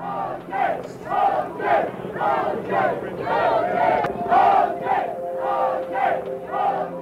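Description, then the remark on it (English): A large crowd celebrating joyously outside a courthouse on a hot, smoggy day cheers and chants in loud, rhythmic bursts, roughly two per second, voices rising and falling together in a steady, jubilant pulse for the whole stretch. “It was mayhem, but not the kind of mayhem that people feared. It was a joyous celebration.”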